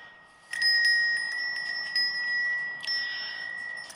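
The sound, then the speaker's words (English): A metal wind chime hanging outside is struck twice by hand, each hit ringing out in clear, sustained high tones, with light tinkling taps in between as the ring slowly fades. No one speaks. “My chime never chimes unless I hit it.”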